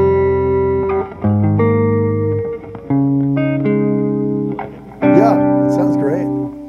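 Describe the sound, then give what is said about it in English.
Sustained electric guitar chords ring out with layered, overlapping echoes from two delay pedals running at slightly different rates, smearing each change into a dense wash, loud, with a few brighter picked notes sparkling on top. “Having those two delays going at slightly different rates, it kind of seems to fill everything up a little bit.”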